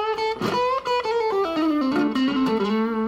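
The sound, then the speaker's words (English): A bluesy electric guitar phrase through a small amp, with a slightly gritty, mostly clean tone. Sustained notes bend and step downward, played clear with no talking. “You know, and then like for a cleaner kind of set, I know it's not going to be super clean on this little lamp, but you know, it has that nice bluesy kind of tone.”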